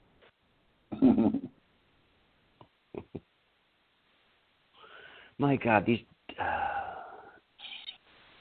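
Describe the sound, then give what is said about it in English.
Dogs whine and yelp in a few short, high-pitched bursts, with brief pauses between them and a person speaking in between. “these dogs.”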